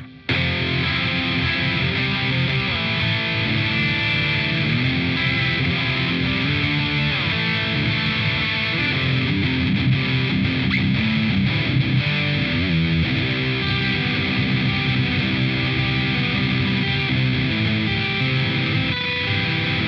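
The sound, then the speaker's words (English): A heavily distorted electric guitar plays a dense, sustained riff with thick, saturated high-gain tone, loud and steady for the whole stretch, with no voices over it, played through a Plugin Alliance Brainworks Ingle Savage 120 amp simulator on channel 2 with impulse responses. “Same impulse response libraries, but these are going to be specifically voiced for the Plugin Alliance Brainworks Ingle Savage 120 on channel 2.”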